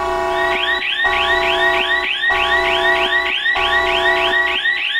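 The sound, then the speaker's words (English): A loud electronic warning siren cycles through a repeating pattern, a steady held tone followed by rapid rising whoops, about once every second, with no one talking. “We've got our warning siren out of the way there, just to let you know that this is, in fact, a satire show.”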